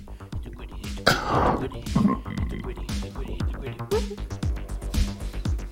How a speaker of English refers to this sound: Have you guys ever thought what a burp sounds like from inside of someone's mouth?